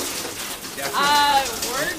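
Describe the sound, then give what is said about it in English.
Hail patters steadily and densely on a hard surface, a continuous clatter that swells slightly in the second half, with a brief tonal vocal sound rising over it midway. “It's hailing. It is hailing.”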